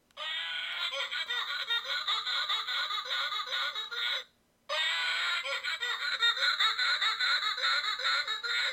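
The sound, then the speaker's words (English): A novelty donkey mask lets out a loud electronic braying noise in two long, rapidly pulsing bursts separated by a brief pause, harsh and fairly high-pitched, with no talking over it. “Yeah, it sounds exactly like a donkey, doesn't it?”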